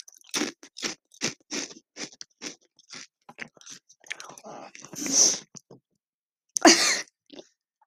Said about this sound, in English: Don't mind the crunching, I'm just eating chips.